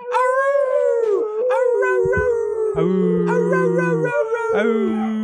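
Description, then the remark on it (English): An office dog howls loudly in long, wavering tones, with people seemingly howling along to imitate it. Several overlapping howls rise and fall continuously for about five seconds. “If we howl, he'll howl.”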